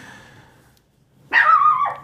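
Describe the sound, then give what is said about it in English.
A dog barks: a faint, trailing vocalization fades out, then after a short pause comes one loud, drawn-out bark. No one talks. “Hey, we have a dog.”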